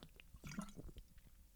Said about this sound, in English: Wait, we should do an actual gulp sound because we're talking about drip. No, drink. Drink, that's the whole sound effect. And I have water here, so let's do an actual gulp sound.